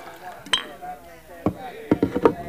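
A few sharp glass clinks ring out, one early and a quick cluster near the end, as a man at a dresser pours another glass of rye, over faint murmuring voices of a celebrating crowd in a saloon below.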